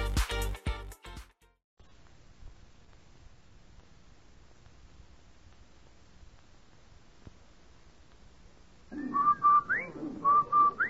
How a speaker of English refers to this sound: Did I hear what? That whistle. Why, that's the Rinso White whistle.